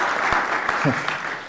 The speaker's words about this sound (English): So a little round of applause